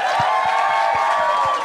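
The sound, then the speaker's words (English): A live audience applauds and cheers loudly and continuously, a dense wash of clapping with whoops and a sustained whistle cutting through the crowd noise, as a weekly comedy show wraps up. “Guys, big round of applause.”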